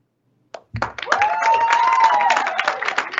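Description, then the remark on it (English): Teachers at a school board meeting burst into applause after a brief sharp clap, dense steady clapping that holds at full strength for a few seconds, with a sustained cheering voice riding over it. “And the applause is from the teachers in the room.”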